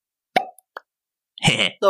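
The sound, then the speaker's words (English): A voice imitates bubbles with mouth pops made by sucking in the lips: a sharp pop, then a smaller one, followed by a burst of wet, bubbly clicking and a short tonal buzz, all fairly loud with silence between. “So, it sounds like a bubble.”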